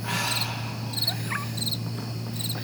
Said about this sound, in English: Crickets.